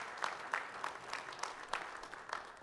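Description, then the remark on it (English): An audience gives Jesus a hand clap of praise as the service begins, a steady, dense wash of applause, with sharper hand claps standing out at a fairly regular rhythm. The clapping is fairly soft and no one speaks. “Can we give Jesus a hand clap of praise as we begin our service today?”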